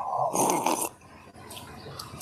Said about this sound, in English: That's a loud sip. Refreshing, huh?